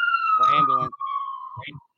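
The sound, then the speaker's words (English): An ambulance siren outside holds a steady, sustained wail throughout, fairly clear and moderately loud, while voices talk over it in brief bursts. “Yeah, it's an ambulance, probably.”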